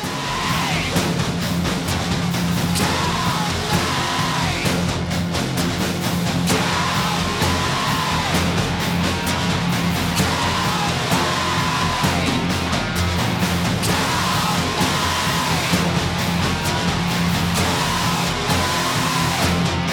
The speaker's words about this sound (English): Voice is just getting more and more distorted until it's nothing but noise.